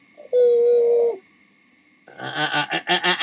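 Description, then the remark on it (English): A voice imitates an old-fashioned dial telephone ringing: first one long, steady, fairly high hum, then after a pause a rapid, trilling burst of pulsed tones, loud and without any other talk. “Are you sure it rang that way?”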